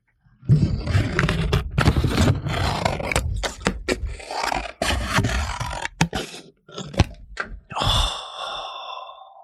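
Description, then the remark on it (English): A voice imitates Mr. Dress Up's scissors cutting paper in ASMR style, as if the microphone were practically in the paper: a run of breathy, crunchy snips and sharp clicks over several seconds, finishing with a short hissing, whistly tone. “So the microphone was practically in the paper while he's cutting. So this is what you'd hear.”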